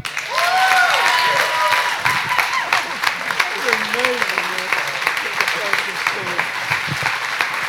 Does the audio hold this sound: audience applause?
yes